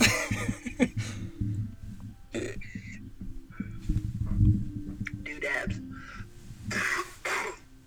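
Several harsh coughs burst out at uneven intervals, mixed with throat clearing and low, muffled vocal noises in between.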